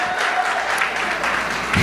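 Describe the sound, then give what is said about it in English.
An audience gives a woman a hand clap in a steady, dense wash of applause that holds at a fairly loud level for a couple of seconds, with a slight swell at the end. “Come on, give her a good hand clap.”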